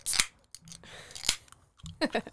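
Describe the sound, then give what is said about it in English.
A sleek black drink can with brown lettering cracks open with a sharp metallic snap and a brief fizzing hiss, followed by another snap and a bubbly, gurgling rush as liquid is poured. “Ooh, I like the cans. They're very stylish.”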